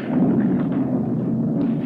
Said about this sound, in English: Oh, good grief, the fire door. The fire door, let go.